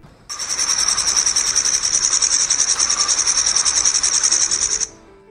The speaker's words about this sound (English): Here's a grasshopper.